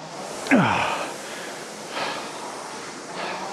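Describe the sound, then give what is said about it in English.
Heavy, ragged gasping breaths after a max-effort rowing session, three in a row about a second apart, the first the loudest and harshest, the later ones softer and breathier against a quiet hiss. “So, realistically, in terms of proper max effort, gasping sessions, that should be the last of them on the 10K plan.”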